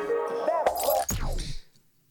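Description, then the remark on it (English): A glass of wine is shaken in a woman's hand, giving a couple of sharp clinking rattles over a soft tonal hum, then fading to quiet. “Shaking the glass that is in her hand, trying to make the wine taste better.”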